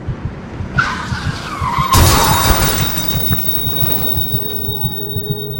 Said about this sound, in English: Someone injured in a traffic accident.